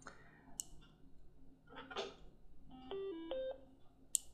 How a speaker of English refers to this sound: On the left is the on-off volume knob. There you go, that's the default power on tone.